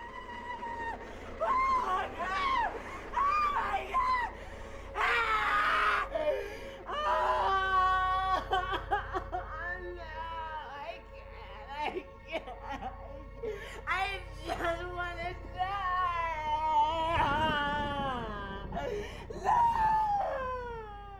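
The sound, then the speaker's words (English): A woman in a film screams and wails in horror, with long, anguished cries that rise and break over about twenty seconds, loud, punctuated by ragged gasps and sobbing moans. “and then I'm going to cut this into the episode. The most horrific scream.”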